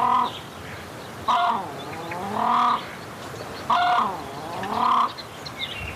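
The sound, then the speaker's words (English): An Australasian crested grebe (pūtekiteki), the Bird of the Century, calls loudly, giving harsh, nasal, braying notes in a steady back-and-forth rhythm, about four calls over a few seconds with no one talking. “The Australasian crested grebe. Pūtekiteki.”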